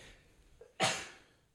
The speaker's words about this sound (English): Oh, sorry, I had to sneeze.